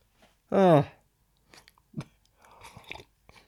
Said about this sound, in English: I need a sip of green tea.